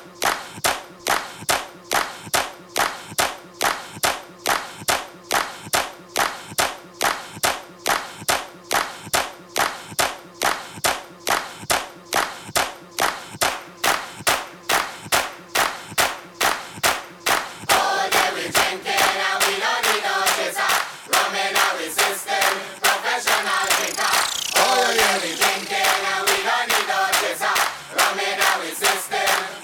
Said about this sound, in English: Clap with me. Clap with me. Speed up the clap. Speed up the clap. Speed up the clap.